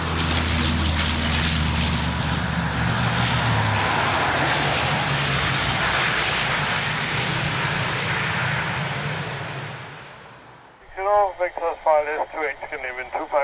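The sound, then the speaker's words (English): A powerful aircraft engine roars loudly for about ten seconds as an aircraft lands or takes off, then quickly fades away; a thin, radio-like voice then speaks briefly, telling a pilot to turn left to a heading of 160 degrees. “I'm in awe still every time I see an aircraft landing or taking off.”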